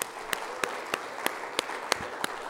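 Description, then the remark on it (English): An audience claps their hands in praise of the Lord, a dense wash of applause punctuated by sharp, evenly spaced claps landing in a steady rhythm, about three per second. “Can you give the Lord another hand clap of praise today, please?”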